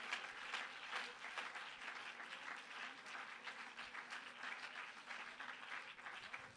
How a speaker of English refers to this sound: Continue to clap your hands unto the Lord.